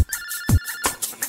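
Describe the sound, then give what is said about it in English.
A video phone rings with an incoming call: an electronic ringtone chirps in quick repeated bursts over a steady high tone, loud, with no one talking. “Look, here's a question coming through now. Come on out of there, nurse, and let's open the video phone.”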